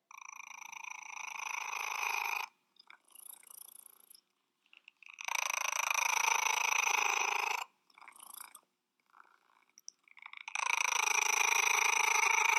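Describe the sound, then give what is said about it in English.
A cat purrs loudly and raspily, in three long rumbling bursts separated by brief quieter pauses with faint rustling, and no one talks. “It's like a Wookiee purr.”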